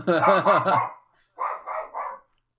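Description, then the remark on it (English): A dog barks in two quick volleys: a loud, harsh burst of about three barks, a brief pause, then three softer barks. No voices. “Shush, dog. Shush.”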